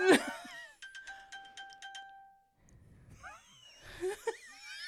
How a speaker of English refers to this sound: I have no idea what that is. That was your phone. It was my phone. How in the world did that happen?